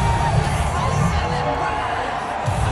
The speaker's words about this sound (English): And the crowd is just going wild for him.